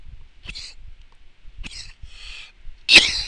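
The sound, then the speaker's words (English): A fit of harsh, explosive coughs, four bursts spaced unevenly over a few seconds, the final one loudest and most forceful. “Alright, I had to cut out over there because that was just too much coughing and just disgustingness.”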